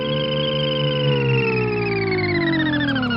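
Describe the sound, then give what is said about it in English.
The doorbell sound effect from the Jetsons cartoon: a steady, buzzy electronic tone with rich harmonics slowly sweeps downward in pitch over a few seconds, loud and continuous with no talking. “And in case you didn't get it from that, I got another Jetson sound effect for you.”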